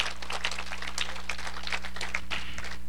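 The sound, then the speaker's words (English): An audience claps their hands to give the Lord a hand clap of appreciation, in a steady, dense burst of applause lasting the whole moment, many overlapping bright slaps over a low constant hum, with no one speaking. “Give the Lord a hand clap of appreciation, if you will.”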